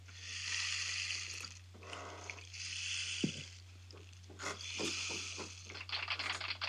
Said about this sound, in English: I'll be right back. It's rain stick time.